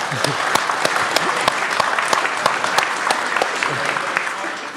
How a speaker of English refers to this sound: Give this person a round of applause.